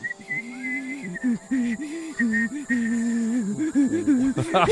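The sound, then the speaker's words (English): A short tune carried in a moderately loud whistle-like tone produced by a vagina, wavering through several phrases without pause, ending in a brief noisy flourish; no one speaks. “I'll sing the song and then I'll point to your Vajiji and the Vajiji can whistle.”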